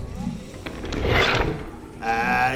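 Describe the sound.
Dice clatter and tumble across a hard tabletop in a short rattling burst, fairly loud, as an attack roll is made in a game, followed by a brief voice at the end.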